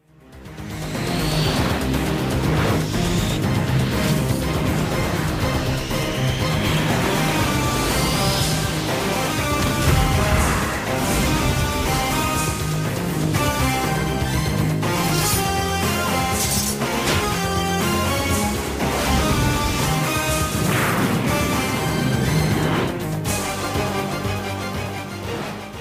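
The X-Men animated series theme song plays loud and continuous, a dense, driving instrumental with punchy beats and bright, sweeping synth lines and no voices.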